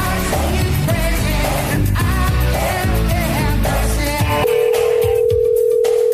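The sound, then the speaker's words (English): Background music plays, then cuts to a steady electronic telephone tone near the end: an outgoing call to a woman ringing on the line, loud, with no one answering. “We'll try to call her”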